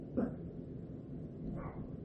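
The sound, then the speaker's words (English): Dogs barking at one another in a barking exchange, two short, muffled barks about a second and a half apart over a steady low background rumble. “Now, there's a barking war happening around me, so just bear with me.”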